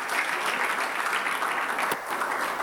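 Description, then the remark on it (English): A crowd claps steadily, a dense, even patter of many hands sustained throughout with no voices rising above it. “Can you clap for him, please?”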